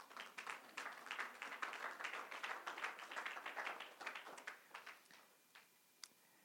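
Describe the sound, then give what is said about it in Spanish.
A church audience applauds the Lord steadily, many hands clapping in a dense, rhythmic patter that tapers off over several seconds, ending in a few scattered claps. “Permítame tantito, denle un aplauso al Señor por mientras.”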